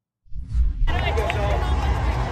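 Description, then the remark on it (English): A street crowd roars and cheers at naked bicyclists riding down the street, with steady, dense voices and hubbub, starting after a brief low rumble and swelling abruptly into a continuous loud wash of noise. “Here we are, the naked bicyclists making their way down the street to the cheering throngs.”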